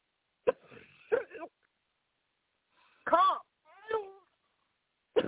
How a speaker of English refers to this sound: You're going to have to cough, dear. All the way. Don't swallow anything. Cough it out.